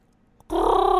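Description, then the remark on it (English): After a brief silence, a person abruptly lets out a loud, sustained imitation of a Wookiee growl. It comes across as strained, wavering and high, more like a squawking bird than a roar. “that wasn't even Chewbacca. That was way too. It was like a dying bird.”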